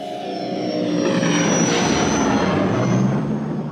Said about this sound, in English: That was another mix of the engine from the DC-3 and a little bit of an electrical relay sound from a motor.